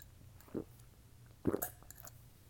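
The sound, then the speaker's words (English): Someone sips homemade blueberry lemonade, steeped like tea, with two short, wet slurping gulps about a second apart against a quiet, faintly humming background. No one speaks. “Look, let me take a sip.”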